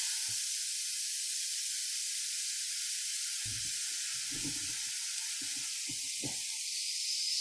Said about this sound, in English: If you could kindly put your ears to the speaker, I'm going to start the grill.